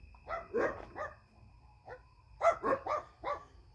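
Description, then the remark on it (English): A dog barks in short bursts: a quick run of three barks, a lone bark, then four more in rapid succession, not loud, over a low steady background hum. “Uh-oh, we might have a loose dog in the neighborhood because somebody's whistling.”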